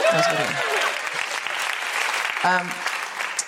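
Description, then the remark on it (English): A crowd claps steadily in a dense, sustained wash of applause, with brief voiced shouts or cheers rising out of it near the start and again midway. “Yeah, you are allowed to applaud now.”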